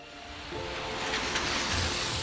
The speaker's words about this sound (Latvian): Rīgas centrs novakara. Laiks, kad lielākā daļa pilsētnieku dodas mājup no darba.